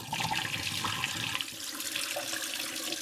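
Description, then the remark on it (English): Coffee-based film developer pours out of a film developing tank after 11 minutes in a steady splashing gush that runs without a break for about three seconds, with no voices present. “And we'll pour it out when we hit 11 minutes.”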